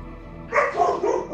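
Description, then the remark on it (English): A dog barks loudly, a rapid burst of several sharp yaps in quick succession after a brief quiet moment. “Oh, you've got a dog too, so this will be great. And I'm sitting here thinking, all right, I'm just hoping the dog does not do what it's doing right now”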